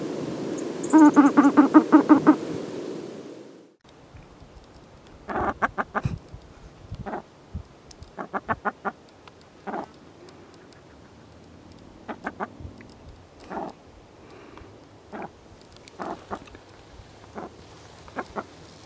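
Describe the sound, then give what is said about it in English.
A female dusky grouse gives a quavering, rapid cackle lasting a few seconds, then a scattered series of short, chicken-like clucks at irregular intervals, heard alone without talking. “Females give a quavering cackle or whinny. They also have a hiss and chicken-like clucks.”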